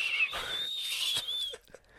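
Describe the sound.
A breathy, high-pitched whistle blown through a straw holds one steady, slightly wavering note for about a second and a half, then cuts off, leaving a couple of faint clicks.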